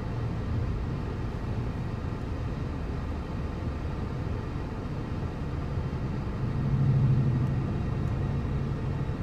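car driving in traffic

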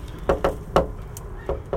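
knocking

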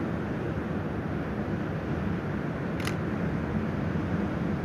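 camera shutter release click

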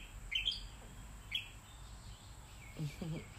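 birds chirping

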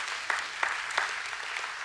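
audience clapping

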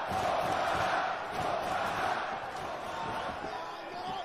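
wrestling arena crowd cheering

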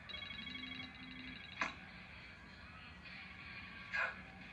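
phone ringing

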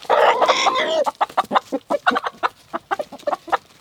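chickens clucking

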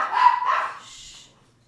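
dogs barking

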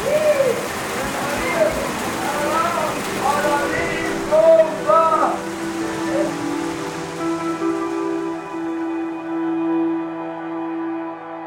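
heavy rain pouring down

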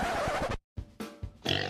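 pig grunting

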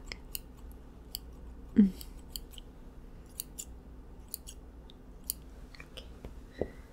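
scissors snipping hair

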